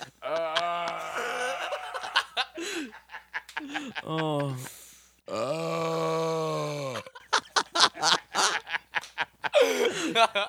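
A loud, drawn-out groaning burp rumbles for a couple of seconds, resonant, with bursts of snickering laughter and other vocal noises before and after it.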